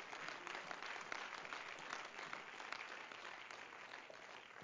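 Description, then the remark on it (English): After a prayer, an audience claps their hands to God in sustained, dense applause, a steady crackling wash of many overlapping claps at fairly even loudness for several seconds, with no talking over it. “Would you clap your hands to him again?”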